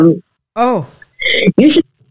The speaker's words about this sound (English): Oh, I apologize. I have a cough.